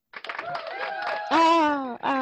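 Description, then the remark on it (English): A short canned applause effect from an applause button: a patter of clapping that swells into loud whooping cheers, all lasting about two seconds before cutting off abruptly. “This is because, like I said, like the applause button has had some malfunctioning in the past few days, so just happy to have it back.”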